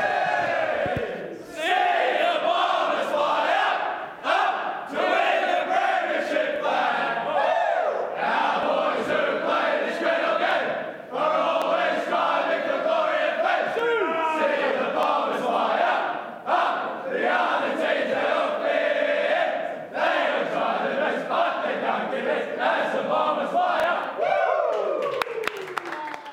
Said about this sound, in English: That's it from us. We'll leave you with the winning song from the Essendon Change Rooms.